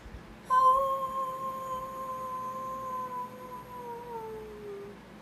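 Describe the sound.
A woman's voice imitates a wolf howl: one long, sustained tonal wail starting suddenly, holding steady, then slowly sliding downward in pitch as it fades, fairly loud.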